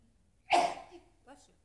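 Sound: sneeze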